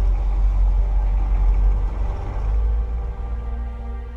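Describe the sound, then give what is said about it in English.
A car engine rumbles loudly with a deep, steady drone, then eases off slightly as the vehicle pulls away. No voices are heard. “Sydney and Andy got in the back seats of the car.”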